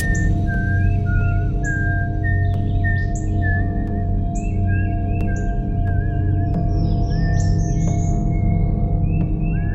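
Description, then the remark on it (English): A woman whistles the nursery-rhyme tune "Mary Had a Little Lamb" as she walks, in clear, steady notes, rising and falling in a gentle melody over a constant low background rumble, with no talking. “Instead, I just saw my wife whistling "Mary Had a Little Lamb" and smiling as she walked.”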